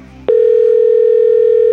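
A telephone dial tone cuts in after a brief murmur and holds as one loud, steady, unbroken hum to the end, as a line is opened to place a cash-prize call to a contest winner.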